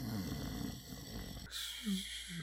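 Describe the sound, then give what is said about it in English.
A person imitates soft snoring with a low, raspy, rumbling breath, then trails off into a few quiet nasal snorts and hums, with no words spoken. “Just in the middle of a sentence, he just slowly starts quietly snoring.”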